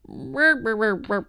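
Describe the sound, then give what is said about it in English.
A person vocally imitates a jaguar growl: a few short, throaty voiced bursts in quick succession, moderately loud. “That's a great jaguar”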